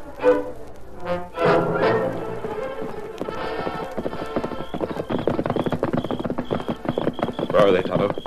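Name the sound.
horse hooves clip-clopping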